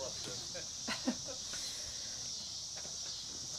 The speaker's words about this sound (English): Did the cicadas just start? Okay. I thought so, but thought, well, maybe I wasn't being observant.